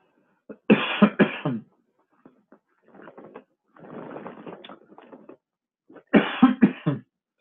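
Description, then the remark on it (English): Harsh, loud coughing in two bursts separated by a few seconds, with quieter breathy throat-clearing and sputtering sounds in between, from someone who had something go down the wrong pipe. “Well, sorry, something went down the wrong pipe a little bit there.”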